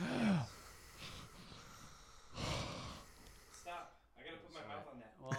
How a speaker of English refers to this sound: No, as I don't have headphones on. Hear me breathing.